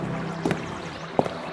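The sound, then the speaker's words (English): Venetian canal water laps steadily around a gondola as two dull wooden knocks land about a second apart as it pulls up to crumbling stone steps on a warm summer evening. “Our gondola pulls up to the crumbling steps. We climb out of the swaying boat, catching a last whiff of the Venetian canal on this warm summer evening.”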